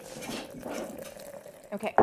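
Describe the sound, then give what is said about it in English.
Coffee pours into a cup in a steady trickle for about two seconds, followed by a couple of sharp clinks of a cup or dishware at the end. “I'm going to pour myself some coffee.”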